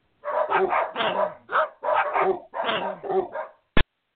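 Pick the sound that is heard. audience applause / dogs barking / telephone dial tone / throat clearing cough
dogs barking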